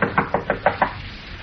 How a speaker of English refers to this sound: Rap on the door, Olson. Okay.